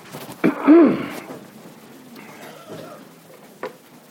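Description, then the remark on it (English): A loud throat clearing from a speaker with a residual cough: a sharp catch followed by a rough, drawn-out rasp, then quiet, ending with a short, softer cough-like burst. “I'm not ill, but I do have a residual cough from that C thing out there. So I apologize for me having to clear my throat every once in a while.”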